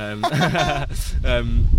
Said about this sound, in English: I think we so windy. I know. Sorry about the sound.